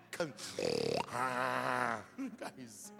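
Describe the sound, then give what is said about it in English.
A voice mimics a pastor snoring: a rattling, pulsing inhale followed by a long droning exhale, then a few short grunting vocal sounds, all fairly loud. “Pastor is sleeping. Hello? Pastor is snoring.”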